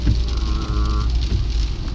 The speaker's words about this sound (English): Oh, this rain sucks.